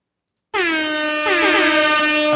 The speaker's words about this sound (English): That one gets hip-hop air horn, I'm telling you.